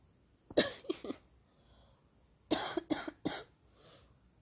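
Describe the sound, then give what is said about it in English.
Two bouts of dry coughing, each a quick run of three harsh hacks separated by a short pause, followed by a soft breath at the end. No speech. “But I laughed because I actually felt like the need to cough when I was thinking that.”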